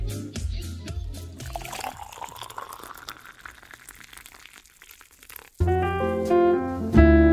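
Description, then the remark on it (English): Coffee pours steadily into a cup, its gurgling pitch rising as the vessel fills, before a loud burst of tonal music cuts in and takes over for the final seconds. “But first, the drip of the day.”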